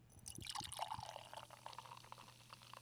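Beer pours from a tap into a glass in a steady, gurgling stream, with bright fizzy splashing near the start that settles into a continuous liquid rush.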